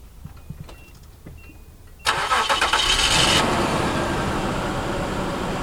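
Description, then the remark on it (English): A few quiet clicks and faint beeps, then a Nissan Pathfinder engine, started with the Nissan key, cranks with a bright, chirpy starter whir for about a second before catching into a steady, loud idle. “It sounds like, I mean, even that chirpy starter sound is still there.”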